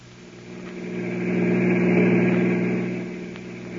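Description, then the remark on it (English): A car engine hums steadily as the car drives toward a hotel, the low drone swelling louder toward the middle and easing off again, with no voices over it. “Get the car. I'll tell you more on the way.”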